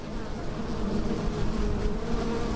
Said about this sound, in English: There's our swarm of bees, so much drier than on the boat, and they're gathering over that veiled lady's head.